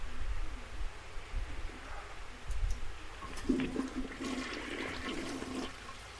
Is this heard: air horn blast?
no